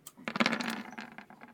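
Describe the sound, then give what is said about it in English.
Dice are rolled to hit, rattling and clattering across a hard surface in a quick burst of sharp, overlapping clicks, lasting just over a second before settling, with no talking. “Okay, give me a roll to hit.”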